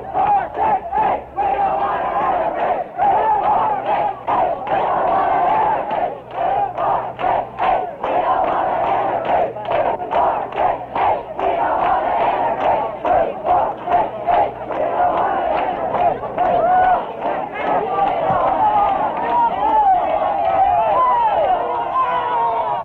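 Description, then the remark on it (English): A large, unruly mob of white bystanders, blocked by state police barricades from passing into a town's all-Black second ward, shouts and yells in a dense, continuous roar of overlapping voices, loud and steady throughout, with a muffled, narrow-band quality like an old recording. “This is what the unruly mob sounded like.”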